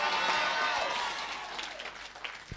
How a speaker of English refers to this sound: Let all my guests clap and shout yes.